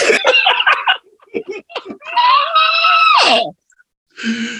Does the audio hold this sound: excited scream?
yes